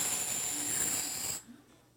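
An owl gives a harsh, breathy hiss, a single sustained burst of raspy noise lasting over a second before cutting off into near silence. No one speaks.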